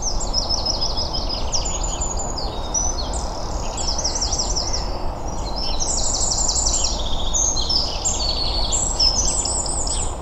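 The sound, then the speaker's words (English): A dunnock sings a rapid, high-pitched warbling song in quick repeated bursts over a constant low rumbling background noise with no voices. “The other song I was pleased to get was, and this is one where we will need to check it out, it's what I think is a dunnock.”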